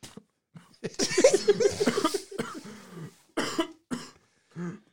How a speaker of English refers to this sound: As he's coughing his brains out. Yeah, here, I will mute him.